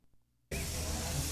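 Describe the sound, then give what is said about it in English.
After a brief near-silent moment, a loud sizzling fajita plate bursts in abruptly and keeps hissing steadily, a dense crackling wash of sound with no voices. “And this is the sizzling summary brought to you by Applebee's.”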